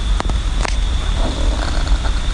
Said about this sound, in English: to me, that sound is a brush-tailed possum.